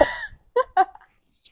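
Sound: cough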